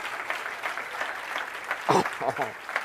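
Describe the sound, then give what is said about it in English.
An audience claps hands in a dense, continuous patter of many overlapping claps, with raised voices and cheers breaking through near the end. “I'm gonna wait while you clap your hands like you mean it.”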